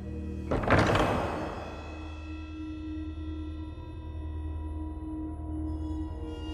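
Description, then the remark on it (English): A heavy door swings open with one deep, resonant thud near the start, its rumble fading into a steady low hum that carries on to the end. “When the doors finally open, the king is sent to Parliament to await his fate.”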